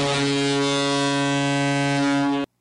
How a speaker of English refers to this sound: I thought we took the air horn away from her.